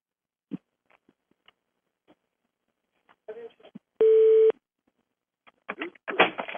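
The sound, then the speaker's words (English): A single short electronic telephone ring tone, an incoming call from Australia on an order line, sounds clearly for about half a second, surrounded by scattered clicks and brief bursts of rustling and muffled voices. “I hear it. It's coming in on my phone, too.”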